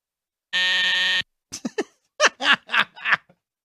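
A loud, harsh buzzer blares steadily for under a second and cuts off abruptly, signalling that time is up, followed by a few short bursts of laughter.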